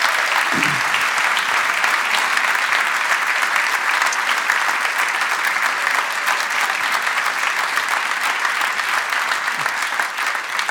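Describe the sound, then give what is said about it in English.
A steady round of applause from a crowd for Pete Greig as he comes forward, dense, even clapping that holds at a constant loud level for about ten seconds, with no voices standing out. “Would you give Pete Greig a round of applause as he comes, please?”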